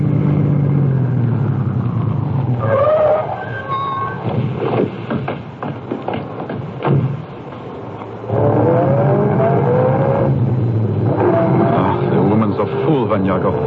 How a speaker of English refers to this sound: I shall stop the car now and let you off.